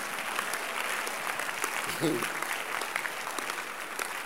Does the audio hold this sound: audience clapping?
yes